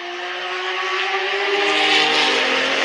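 A loud, high-pitched IndyCar racing engine revs steadily, its whining tone climbing slightly as it builds, heard on its own with no talking.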